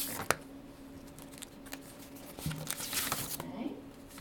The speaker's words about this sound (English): And if you will open up this packet of yeast and put that in 3 tablespoons of water.